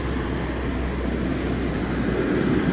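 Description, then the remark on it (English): A steady, continuous rumble of street traffic on an afternoon by the Church of St. Joseph's, deep and even in loudness throughout, with a broad hiss on top and no voices. “There's actually quite a bit of traffic here.”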